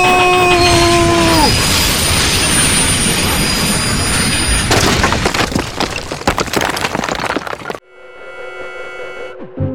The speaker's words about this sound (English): The emergency brake is out there. No time. No, we have to stop the train. We have to stop it.